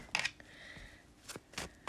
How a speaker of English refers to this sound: I will be shuffling the Tried and True on this channel, the Tarot Mucha